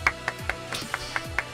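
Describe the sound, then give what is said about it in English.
A short run of about seven crisp hand claps at a steady, fairly quick pace, with a faint low murmur underneath, like one person applauding briefly. “Why are you giving that random applause?”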